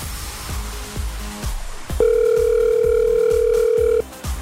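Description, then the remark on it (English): A telephone dial tone sounds once as Pure Country 94 radio places a call to a contest winner, a steady, loud two-second electronic hum rising over a quieter rhythmic music bed, then cutting off abruptly. “we could be making a phone call just like this one.”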